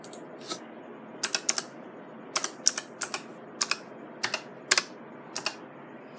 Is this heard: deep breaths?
no